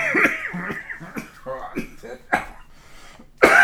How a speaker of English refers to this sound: Excuse me. This is like talking to a 90-year-old man. Just you start laughing and you cough.